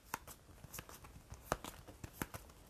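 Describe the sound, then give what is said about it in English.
Cards being shuffled, a quiet run of uneven papery flicks and snaps spread across a few seconds, with no one speaking. “I'm like trying to do the additional shuffling for these real quick.”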